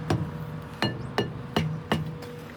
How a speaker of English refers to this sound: On a truck, it's important to knock the tyres with a hammer or steel bar to check for punctures or flats. A fully inflated tyre will give a nice clear ring. A flat or underinflated tyre will give a dull thud.